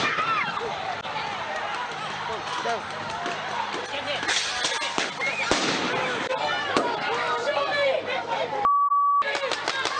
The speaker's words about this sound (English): I believe there are several fires raging now down this street. And this is what you hate to see. There are people throwing fireworks and who knows what else.